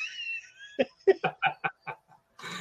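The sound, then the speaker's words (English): A cat meows, starting with a long, drawn-out cry, then a quick run of about six short, clipped meows, ending with a brief burst of noise. “And then all of a sudden, a what? Cat?”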